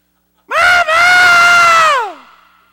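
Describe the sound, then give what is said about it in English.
A person voices a loud, sustained scream lasting about a second and a half, with a brief break near the start, then trailing off into a falling wail. A human imitation of a blood-curdling scream. “With a blood-curdling scream.”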